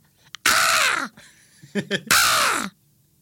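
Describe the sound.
A voice imitates a crow with two loud, harsh, drawn-out caws, separated by a few short, quieter throaty clicks and grunts, with no talking.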